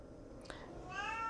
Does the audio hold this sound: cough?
no